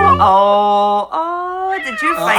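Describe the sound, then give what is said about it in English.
Two drawn-out, tonal meows from a cat, each held steady for about a second with a brief gap between, loud, with a bit of noisy rustle toward the end. “What is that sound? Well, you said about three episodes he was a pussycat”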